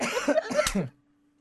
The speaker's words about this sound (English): Oh, no, I'm coughing. I have it. Oh, my God.